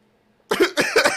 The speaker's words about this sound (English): Burps.